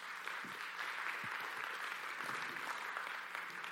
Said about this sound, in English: I love to be clapped for. It's one of my favorite things.